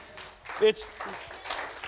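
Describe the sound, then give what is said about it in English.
An audience claps for Jesus Christ in a steady, noisy patter of many hands, moderately loud and continuous for a couple of seconds, with a brief tonal sound and murmuring voices mixed in. “Yes, clap for Him.”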